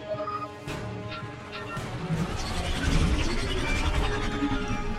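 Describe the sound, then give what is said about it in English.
A dense, continuous mechanical roar of spaceship engines running steadily, with humming tones and a rushing, crackling texture that grows slightly louder and fuller toward the end, with no one speaking. “Shutting down the engines.”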